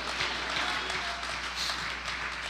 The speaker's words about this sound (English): Oh, clap your hands and shout hallelujah.